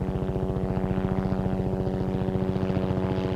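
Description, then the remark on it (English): The Red Bull helicopter drones loudly and steadily overhead above a rock climber on a hard pitch, its rotor beating a fast, even chop over a deep engine hum, with no voices throughout. “The Red Bull helicopter buzzed above, and David started to doubt if it was possible.”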